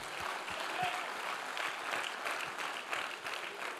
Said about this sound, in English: Clap your hands for some daily bread.